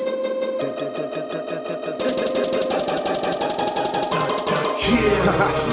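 Dramatic, superhero-style music with a driving, repetitive pulse and sustained tones, staying loud throughout and swelling into a heavier, fuller low end near the end. No one speaks.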